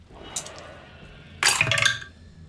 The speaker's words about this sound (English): Oh, very nice. I like the sound of his dice. It's so good. That's the Wormwood Tower.